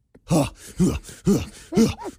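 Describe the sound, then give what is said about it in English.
A voice imitates the heavy, loud panting of a man on a gym treadmill: four strained, groaning breaths in a quick steady rhythm, each a harsh, forceful voiced huff. “Why are you breathing like that?”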